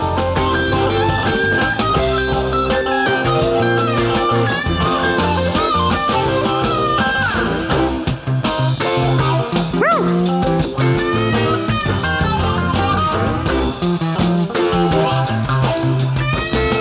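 Loud full-band music in which a guitar runs through a wah pedal, its notes sweeping with a vocal, yowling quality over steady keyboards and drums for the whole stretch.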